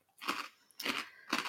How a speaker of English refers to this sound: Are you doing a bit of ASMR there? Crunching crunching into the mic, aren't we?